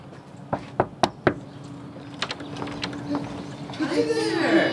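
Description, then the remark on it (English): Four sharp, evenly spaced, loud knocks on a front door by a mother and her Girl Scout daughter selling cookies door to door, followed by a quiet stretch and then faint voices and rustling as someone seems to answer. “But for now, we're hitting the pavement and knocking on doors, albeit with masks, hand sanitizer, and 6 feet of distance.”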